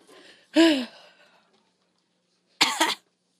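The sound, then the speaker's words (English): Two sharp coughs separated by a pause of about two seconds, the first followed by a short wheezy tail. No talking. “Get that cough out.”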